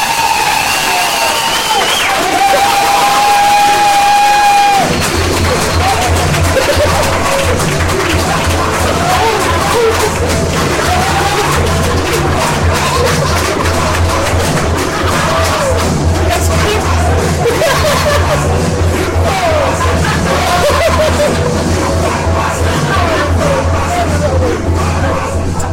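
A brief steady tone opens, then a loud, continuous roar of an audience cheering and shouting as Ed Gamble is welcomed to the stage, with clapping mixed in, holds steady to the end.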